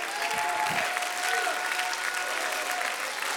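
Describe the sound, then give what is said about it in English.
A church audience claps steadily and loudly, a dense wash of many hands, with a few voices calling out over the continuous applause. “Clap your hands and shout, we need extra.”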